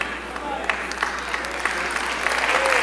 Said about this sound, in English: I know everybody can't clap on that. Some of y'all got a little attitude with that.